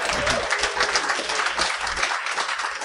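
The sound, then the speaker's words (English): An audience at a talk on investing in oil and gas breaks into steady applause, a dense wash of many hands clapping at an even, fairly loud level for the whole few seconds, with no voices rising above it. “Now, how many of you in the audience learned a ton more about the whole idea of investing in oil and gas by applause?”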